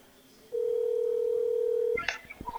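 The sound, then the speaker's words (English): An outgoing phone call rings over a speakerphone held up to a microphone: one steady, fairly loud ringback tone lasting about a second and a half, then a click as the line picks up and a voice begins. “So let's go ahead and call … here. I know he's waiting on us.”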